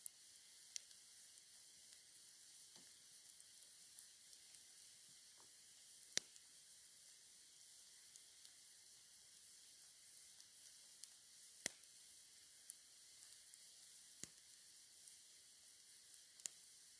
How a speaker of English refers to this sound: And then I can't decipher whether I heard it or not because of this sizzling and the power lines, but I swear I heard brush moving that way.